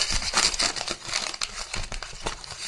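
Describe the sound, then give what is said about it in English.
Paper slips rustle and crinkle as they're stirred around in a hat to pick a topic, a steady, busy crackling that swells and dips for a few seconds with no one talking. “It's almost as though there's paper in the hat.”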